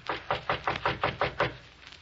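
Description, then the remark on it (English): A quick, even run of about seven sharp knocks on a private door off a reception room, each a crisp rap of equal loudness, then a brief quiet tail. No one speaks. “We'll knock once on this private door here and then go in.”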